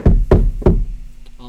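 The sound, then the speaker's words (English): Three firm, evenly spaced knocks on the wooden door of a family's house, loud, followed by a brief quiet tail with a faint tonal hum at the end. “So you knock on the door.”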